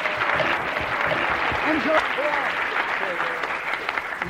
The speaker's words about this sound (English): Give him a clap.